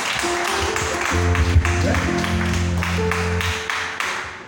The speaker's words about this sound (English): Amen. Clap your hands one more time for the Lord.